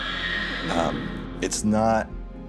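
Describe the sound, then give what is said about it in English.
A horse whinnies far away, its high wavering, scared-sounding call echoing and shifting in where it comes from, with a low steady hum underneath. “So there's this like whinnying. And it's just an echo.”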